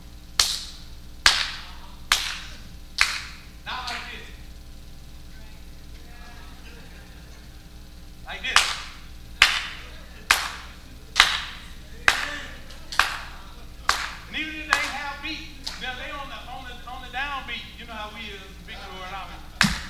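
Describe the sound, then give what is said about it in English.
Sharp hand claps demonstrating how people in church would clap, in a steady rhythm: a first run of about six, a pause, then a longer run of around ten, with talking mixed in near the end. “In my perfect church, people would clap like this.”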